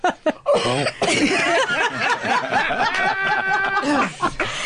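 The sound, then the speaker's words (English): A second tenor singer splutters through nearly five seconds of rapid, voiced coughing bursts, loud and almost continuous, with short breathy catches between them and no speech. “Your second tenor over here is either dying of laughter or desperately needs to sneeze. Or cough.”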